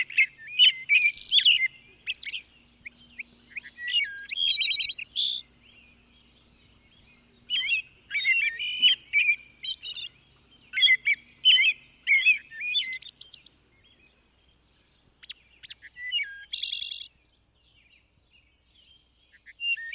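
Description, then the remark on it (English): A thrush sings alone in clear, fluting phrases, bursts of rich whistled notes with short pauses between them, fairly loud against a quiet background. “The thrushes all have come, and I sit down upon the first rock, with hands full of pink azalea to listen.”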